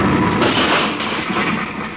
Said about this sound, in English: What happened? Who tosses a bomb at us? I just do.